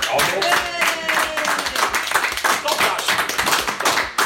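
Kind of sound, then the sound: crowd, applause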